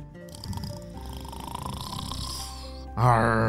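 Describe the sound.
A voice imitates a long, rasping snore, a loud rumbling drone lasting about three seconds, then breaking into a brief voiced, tonal sound at the end.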